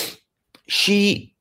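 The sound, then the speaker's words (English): Someone blows their nose: a brief breathy hiss and a small puff, then a louder half-second blast of air with a buzzing, honking low tone, with no talking. “Sorry, I just gotta blow my nose for a second.”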